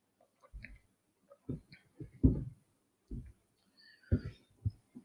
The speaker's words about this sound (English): Let me take a sip of water and check out the live chat. One sec.